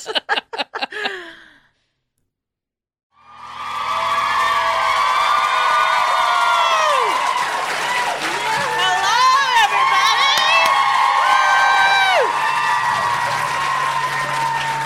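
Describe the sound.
A brief voice speaks, then after a pause a large crowd in Boston erupts into loud, sustained cheering and applause, with whoops and high shouts rising above the steady clapping until the end.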